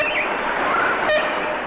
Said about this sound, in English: The ivory-billed woodpecker. Maybe. The grail bird, the good lord bird, the feathered Elvis, the ivory-billed woodpecker.